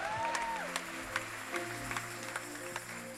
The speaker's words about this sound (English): I wish you would clap your hands and celebrate Jesus on that.